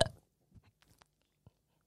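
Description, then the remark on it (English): A short, gruff burp erupts at the very start and quickly fades, followed by a few faint, scattered mouth clicks and smacks in otherwise quiet surroundings. “What a well-timed burp that was.”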